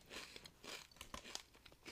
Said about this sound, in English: I'm going in for a chip. You have to eat a chip every round. You're trying them. You can go for a small one if you'd like. I'm putting this in right now.